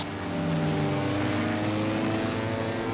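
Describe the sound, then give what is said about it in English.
A propeller bomber drones steadily overhead, its engines producing a loud, continuous low hum with layered buzzing tones that hold an even level throughout, with no voices. “The bomber flew right into it. It seems to have tangled up in the propellers.”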